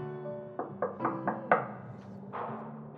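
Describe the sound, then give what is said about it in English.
Five quick, fairly loud knocks on a wooden door of a house in the old part of a prison, in an uneven rhythm, followed by a soft rustling shuffle with no one speaking. “Up in here, we got actual wooden doors on our houses.”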